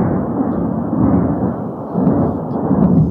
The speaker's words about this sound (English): What is that noise? Yes, that's thunder. That's easy. Thunder. Not an electric guitar.